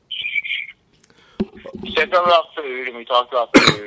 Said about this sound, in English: I remember, as I have a cough attack, to be even more professional on this episode.